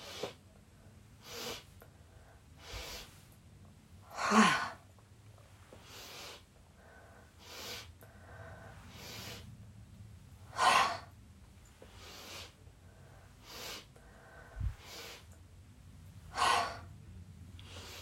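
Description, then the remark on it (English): During a yoga breathing exercise, short, sharp nasal sniff inhales come in quick bursts as the arms move forward, outward and forward, each set ending with a stronger, forceful exhale while flopping into a forward bend, repeated several times in a steady rhythm, fairly quiet with no talking. “And then arms outward, more little sniff. And then forward again, another sniff. And then flop forward on the exhale into a forward bend.”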